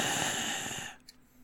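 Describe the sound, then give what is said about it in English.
An exaggerated heavy breath rasps loudly for about a second, a voice deliberately imitating heavy breathing, then cuts off to near silence with a faint click. “If I'm in your Super Hornet sitting behind you, you'll hear me breathing in my sexy breathing tones.”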